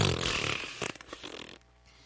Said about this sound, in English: Farting balloon.